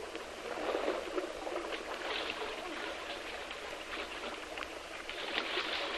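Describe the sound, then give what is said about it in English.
Water churns and splashes steadily for several seconds, a dense, rushing wash with small bursts of patter throughout, moderately loud, with no voices, as people falling from a collapsed bridge dive and strike deep river water. “Fortunately, the water is quite deep, and with their keen presence of mind, they dive as they fall and strike the water in comparative safety.”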